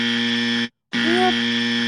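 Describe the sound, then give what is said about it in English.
A loud, harsh buzzer sounds twice: a steady low-pitched buzzing blast, a short silent break, then a second equally loud blast with a faint rising-and-falling tone riding over it. “We are buzzing it.”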